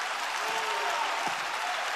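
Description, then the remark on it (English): An audience claps their hands in praise of God in a steady, dense wash of applause that stays loud and even throughout, with faint voices mixed underneath. “Clap your hands and praise him for that.”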